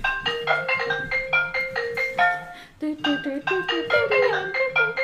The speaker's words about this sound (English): Such an iPhone ringtone.